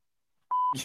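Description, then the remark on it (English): A single steady electronic beep, loud and clean, lasting about a quarter second, like a voicemail recording tone, followed immediately by the start of a voice. “At the tone, please record your message.”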